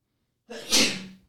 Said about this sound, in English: God bless you. Stop it. No, my buddy always says that. No, you sneeze and you go, stop.